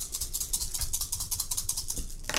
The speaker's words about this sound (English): Let's roll in the dice. Roll.